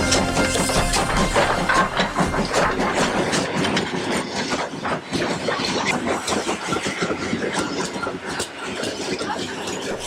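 A train rumbles and clatters, pulling into a station with steady loud mechanical noise and intermittent metallic clanks throughout.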